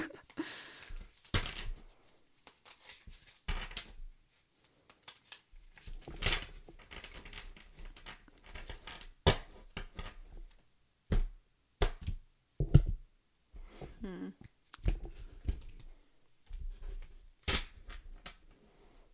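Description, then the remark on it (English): Tarot cards being shuffled, with irregular bursts of crisp tapping and brief riffling clicks, some louder and sharper than others, with short quiet gaps between them and no talking. “So if you hear any tapping, that's the cards.”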